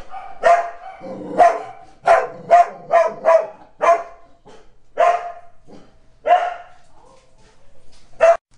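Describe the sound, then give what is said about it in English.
Dogs bark in a rapid, irregular volley of sharp, loud yaps, several in quick succession, then scattered single barks with brief pauses between, with no talking. “Well, I told you, my dogs get crazy when we start talking about...”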